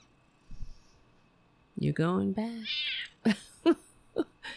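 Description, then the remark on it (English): A male domestic cat lets out a drawn-out, wavering meow while attacking a person, then a quick follow-up cry, with a few short sharp bursts of sound afterward. “It's my birthday and I'm being attacked by an animal. Look at this fucking cat.”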